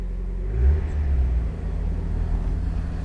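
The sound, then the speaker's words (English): The engine of an original Mazda MX5 (NA, Mark 1) sports car rumbles, revving up in a throaty burst before settling into a steady, low idle-like drone for the rest of the moment. No one speaks. “I think I better get this Mark Wadd Mazda MX5 on the road.”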